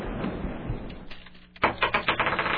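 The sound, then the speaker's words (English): Dice rolled for a call-in prize game clatter across a hard surface and land on a total of 8, a quick burst of sharp clicks and rattles that bounce and settle over about a second, following a soft rustling handling sound. “It is time to roll the dice of destiny.”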